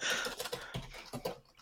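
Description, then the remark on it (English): Rapid, uneven clicking of keys on a computer keyboard, a steady flurry of taps with brief pauses, heard on its own without any talking. “You might hear me clicking away in the background right now”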